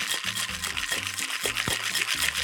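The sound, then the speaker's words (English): A cocktail shaker filled three-quarters full of ice is shaken hard and steadily while making a cocktail, a continuous rattling hiss for a couple of seconds, with a low, faint musical tone underneath. “You're gonna add 3/4 full of ice, and we're gonna shake this again.”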